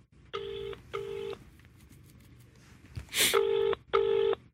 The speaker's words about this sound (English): Can we loudspeaker that? Yeah, should be ringing. Is that volume? Oh, there you go.